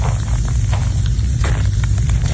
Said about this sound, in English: And you can hear they're spraying some water on it.